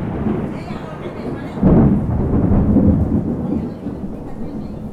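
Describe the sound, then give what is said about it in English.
A rumbling roll of thunder swells up after a couple of seconds and slowly fades, over a steady background hiss of heavy rain, during a storm at the Sanctuary of the Talking Cross in the town of Felipe Carrillo Puerto. “As you can tell, there's a bit of a storm going on.”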